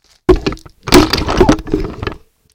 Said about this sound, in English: There's some knocking over stuff. There we go.